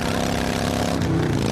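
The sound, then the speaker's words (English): A motorcycle engine runs steadily, a loud, continuous throaty drone with a rough rumbling texture and no pauses, heard alone without any talking. “And this is what that same commercial sounds like on your motorcycle.”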